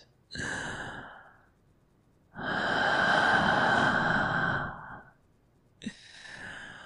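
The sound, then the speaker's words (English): Slow, heavy breaths: a short exhale, a long drawn-out breath that swells loudly, then another starting with a sharp catch. No talking. “Just me breathing down your neck like this.”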